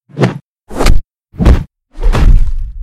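Four heavy punches land up close, evenly spaced about half a second apart, each a sharp whack with a brief swish; the last blow drags into a rougher scuffling tail. No voices.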